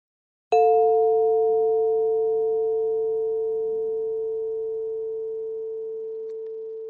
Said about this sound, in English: Let's begin with two different chimes I will play for you. The first chime means sit up nice and straight and face front.